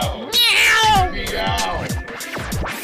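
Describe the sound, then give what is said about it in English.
A human voice mimics a cat, letting out a loud, drawn-out wavering meow followed by several shorter rising and falling meows. “I'm a cat and I'm meowing!”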